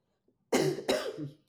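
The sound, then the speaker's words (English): Two quick, harsh coughs in close succession, fairly loud, with nothing else around them. “Coughing was not a choice.”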